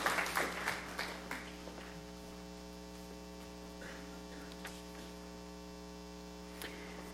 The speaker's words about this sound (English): Let's give them one more round of applause for being up here.